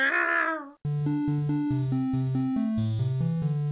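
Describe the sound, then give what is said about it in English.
A single drawn-out cat meow, clear, that falls in pitch at the end, then cuts straight into a bright electronic melody of sustained stepping notes. “Now over to the cat, who's been staring at us through the glass this entire broadcast.”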